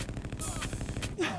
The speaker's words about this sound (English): God, gunshots immediately.